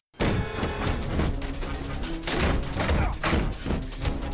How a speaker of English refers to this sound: What is that? Who's banging on the door?